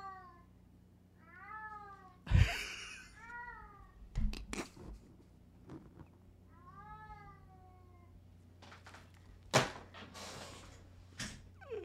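A cat meows repeatedly in drawn-out, wavering calls, fairly loud, interrupted by a few sharp knocks or bangs like a cupboard or door, with no one talking.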